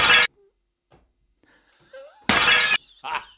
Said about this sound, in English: Just imagine there was a comical sound of glass breaking.